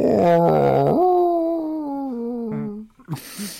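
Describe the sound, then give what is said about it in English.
A human voice imitates whale calls with one long, wavering, moaning tone that starts high, slides lower and holds for about three seconds, loud, followed by brief softer noises. “I think you're talking to walruses there. Yeah, no, it's whale. I speak whale.”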